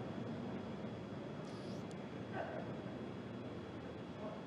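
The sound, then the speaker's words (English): A continuous, dense roar of the nine Merlin engines on a Falcon first stage during ascent, throttling down, a broad rumbling wash that holds steady throughout, fairly subdued, with no voices over it. “We heard we're throttling down the Merlin engines on the first stage.”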